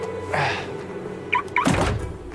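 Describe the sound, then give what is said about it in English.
The TARDIS door is locked like a car with a remote: a soft rustle, then two quick high electronic chirps followed by a solid mechanical clunk, with no talking. “See? Like a car. I locked it like a car.”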